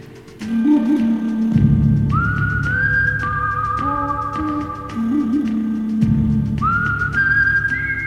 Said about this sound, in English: And as soon as you hear that little whistle, you know what we're talking about. You know which movie it is. And even if you don't know the name of the movie, you know it's a Western,